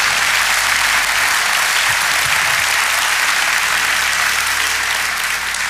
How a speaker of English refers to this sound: Jesus was a descendant of a sinful Moabite woman who left Moab and went to Bethlehem. If you don't clap for that, you're not gonna clap for anything.